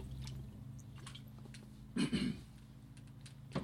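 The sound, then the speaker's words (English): A person drinks a glass of water, with a short cluster of gulping swallows midway over a steady low hum and faint clicks, and no talking. “grab a drink of water and do it.”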